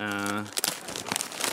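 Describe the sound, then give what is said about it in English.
Gift wrapping crinkles and tears open as a chosen gift, a box of coconut-flavored LaCroix water, is unwrapped, in a quick burst of loud, crackly rustling, following a short sustained vocal tone at the start. “choose a gift and open it up.”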